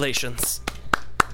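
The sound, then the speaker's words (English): A voice speaks briefly, then three sharp, separate claps ring out in a loose, uneven rhythm, fairly loud, as people clap in congratulation. “We're all just standing on top of the earth clapping for you.”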